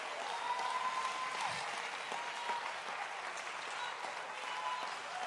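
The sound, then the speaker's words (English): A church audience claps their hands to give the Lord praise, a dense, steady wash of applause that holds at an even level for about five seconds, with no individual claps standing out. “Somebody clap your hands and give the Lord praise.”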